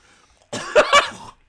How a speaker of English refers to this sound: That was a real cough.